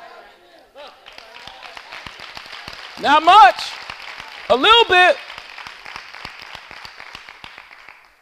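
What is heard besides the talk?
audience clapping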